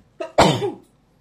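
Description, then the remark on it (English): A single sneeze, blamed on pollen in the air: a brief sharp intake, then a loud, breathy burst that trails off quickly into quiet. No one speaks. “I'm sneezing since lunchtime.”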